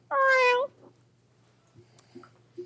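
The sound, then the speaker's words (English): A single loud pet cat meow with a slightly warbling tone, lasting about half a second, followed by near silence with only a few faint, soft noises. “No, it's just his normal meow.”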